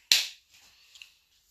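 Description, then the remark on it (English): A single sharp hand clap from a young girl playing rings out, bright and fairly loud, then fades quickly into a faint, hissy tail. No one speaks. “Sorry, playing with my daughter. She likes to clap.”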